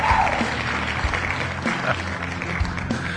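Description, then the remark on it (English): Steady applause from a crowd, a dense wash of many hands clapping at an even, moderate loudness for a few seconds with no voices standing out. “I got some applause in there.”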